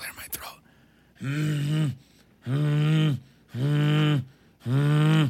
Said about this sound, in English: Oh, okay, hold on. Let me clear my throat.